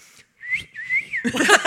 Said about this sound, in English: I wolf whistle food. That's where I've got to.